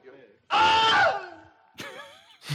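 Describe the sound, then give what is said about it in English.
A man lets out a loud, sharp scream of pain, followed by a shorter falling cry and a brief final yelp, with no talking; the original Wilhelm scream recording, from a clip titled Man Eaten by Alligator, of a man bitten by an alligator. “This is the Wilhelm scream, the original clip that the Wilhelm scream is based off of.”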